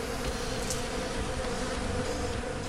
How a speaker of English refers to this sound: Before he can strike, the giant bipedal hive dissolves into a massive swarm of bees that pours down one of the many cracks in the ground.